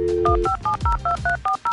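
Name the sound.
telephone number being dialed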